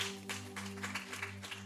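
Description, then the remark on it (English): A group at a worship gathering claps for the Lord in loose, uneven bursts, with sharp bright hits layered over a steady low hum that holds throughout. No voices are heard. “Let's clap for the Lord.”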